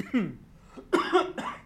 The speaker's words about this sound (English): Damn, no, that's actually some cafecino that got my man coughing. Yeah, went like the that. Wrong hole, and I don't got the cough button to mute my coughing.